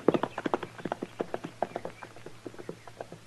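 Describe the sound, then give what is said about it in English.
Horse hooves clip-clop in a steady, brisk rhythm, a long run of sharp knocks, with no voices over them. “I left my horse over the rise there”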